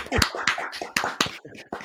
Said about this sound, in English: Round of applause from the gallery.